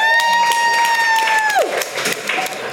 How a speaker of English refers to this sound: And this special round of applause